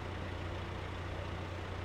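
truck engine idling

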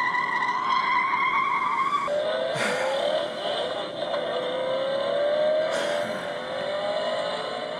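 car horn honking

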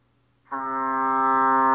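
foghorn blast

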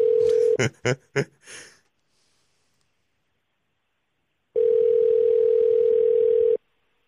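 telephone ringback tone

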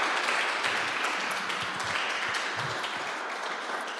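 audience applause

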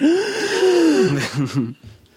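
a person gasping

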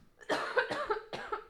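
coughing

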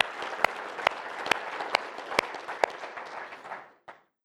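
audience applauding

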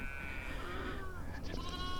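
sheep bleating

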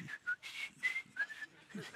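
person whistling a melody

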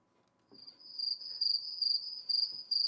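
cricket chirping

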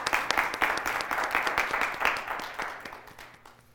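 audience applauding

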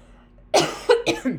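cough

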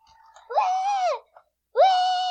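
child screaming

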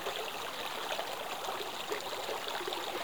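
babbling brook water flowing

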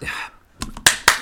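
single hand clap

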